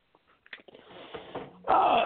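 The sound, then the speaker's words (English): A short throat clearing: a few soft, scattered rasps building into a rough, gravelly rumble, ending in a louder, harsher burst of noisy breath. No words are spoken. “Yeah, I mean, excuse me, I had to clear my throat really quick.”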